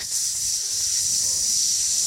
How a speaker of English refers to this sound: ticking radiator in my crib. And everybody's crib in New York.